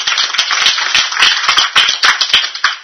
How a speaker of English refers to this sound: So excellent. You good job. Give yourself a nice round of applause.